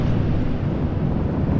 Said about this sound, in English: The gust swirled around the room, wailing and knocking pictures from the walls, breaking the glass of the light fixtures.